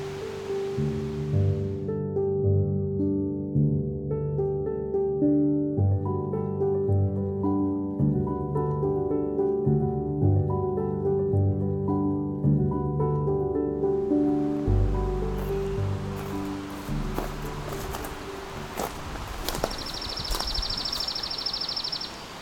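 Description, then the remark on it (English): A chipping sparrow's dry, rapid trill on a single high pitch holds steady for about three seconds near the end, over a rushing noise that follows a long stretch of sustained, organ-like tones. “This one's not really doing that. That's because it's a chipping sparrow.”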